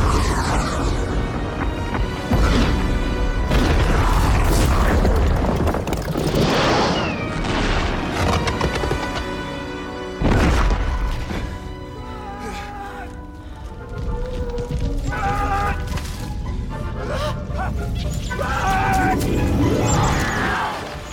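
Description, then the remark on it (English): A massive lava bomb crashes into a jungle with a deep, booming impact, followed by roaring rumble, debris, and shrill animal cries in a loud, dense, chaotic wash lasting the whole stretch. “minute 42 of Fallen Kingdom opens with a massive lava bomb crashing into the jungle”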